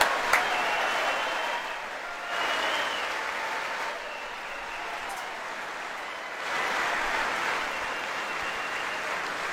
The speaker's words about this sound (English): I'm trying to get through all the applause.